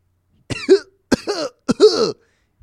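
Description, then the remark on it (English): Three loud coughs in quick succession, each a sharp burst trailing into a raspy, throaty tail, with no talking around them. “A little cough going on.”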